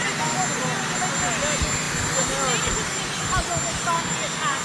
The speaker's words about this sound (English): So if you have all of this helicopter noise in the background, whoosh, whoosh, whoosh, whoosh, whoosh, you can blame it on the helicopter noise